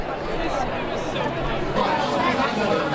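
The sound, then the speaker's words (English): Steady crowd chatter in the Red Lion Pub, a dense murmur of many overlapping voices with no single speaker standing out, holding an even, moderately loud level throughout. “Okay, I'm in the Red Lion Pub.”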